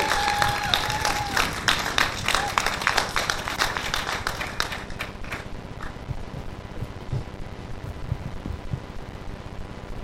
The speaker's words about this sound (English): I wonder how many of you were lying when you were clapping and cheering that you didn't really want me up here.